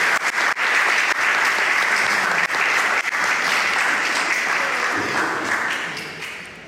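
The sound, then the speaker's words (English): A large audience claps steadily for people who helped bring a passage to life, in a sustained burst of applause, dense and fairly loud, holding for several seconds before gradually thinning out and fading at the end. “Round of applause.”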